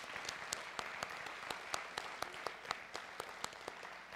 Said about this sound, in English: And I wanted to say from the bottom of my heart, thank you very much. Why don't you give yourselves a big round of applause?